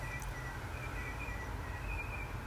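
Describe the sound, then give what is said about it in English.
Thin, high songbird calls trickle along faintly throughout, outdoors, sitting above a steady low rumble of traffic about 40 to 50 feet away. No one speaks. “See, the songbirds are still in my life.”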